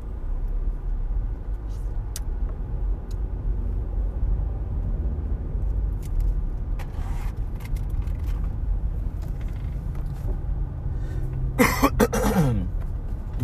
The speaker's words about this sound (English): You may hear me cough periodically on this podcast. Ever since I was a little kid, I've had chronic bronchitis. Every year, since a little one, I get bronchitis.